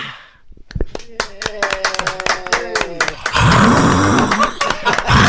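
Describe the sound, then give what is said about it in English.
A crowd claps in scattered, sharp bursts while voices shout and cheer, then swells into a dense, loud roar of applause and cheering that fills the last couple of seconds. “No, that must be the crowd.”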